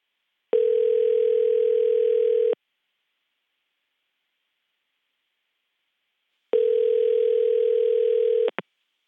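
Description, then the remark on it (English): A phone ringback tone on an outgoing call to a cell phone: two steady two-second rings separated by a long silent gap, ending in a sharp click as the line connects to voicemail. No one speaks. “So I tried to call Jocelyn.”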